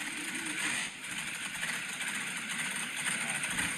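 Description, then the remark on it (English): A race car engine of about 627 horsepower, with a newly fitted header, starts up and runs with a steady, loud roar and a rough, throaty rumble. It holds an even level throughout, with only a brief slight dip early on and no talking. “I think we heard that in the building when we started it up.”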